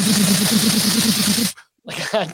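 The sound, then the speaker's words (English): A voice mimics an ATM in public dispensing cash with a loud, rapid rattling whirr lasting about a second and a half, then a brief silence and a short voiced burst. “Like, anytime you're sitting at an ATM in public and it's going...”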